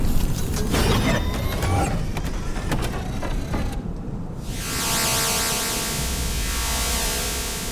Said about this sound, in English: The sound of subterranean machinery whispered from the ground, and an extensive structure emerged.